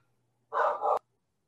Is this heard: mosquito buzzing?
no